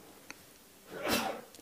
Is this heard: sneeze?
yes